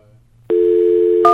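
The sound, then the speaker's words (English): A steady, loud telephone tone switches on abruptly and holds, then a short dialing beep sounds over it near the end. Only a faint low murmur comes before the tone. “That is a telephone ringing.”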